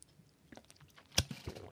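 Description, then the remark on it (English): Someone drinks water loudly into a microphone: soft wet mouth smacks and clicks, then a sharp loud smack followed by a couple of heavier gulping swallows, with no talking. “Would you like to hear me drink water loudly on the microphone?”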